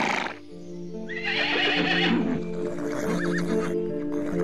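A horse neighs loudly in a long, wavering whinny, with hooves clopping underneath and animal snorts filling the background.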